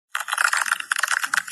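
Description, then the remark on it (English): A dense, steady crackle of crystals forming as water freezes: rapid bright ticks and tinkles overlapping for over a second, fairly loud, with no voices. “So you should imagine kind of the water crystals forming as you're freezing the money.”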